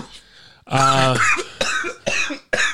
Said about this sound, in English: I was coughing and laughing.